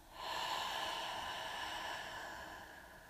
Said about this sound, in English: We'll start with a giant breath in through the nose, filling up, expanding.